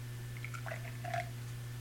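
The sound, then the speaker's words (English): A quick, small pour of a local beer brewed in Everett, heard as a few faint liquid gurgles and drips lasting about a second over a steady low electrical hum, with no one talking. “You try some of this real quick. Okay, just a splash.”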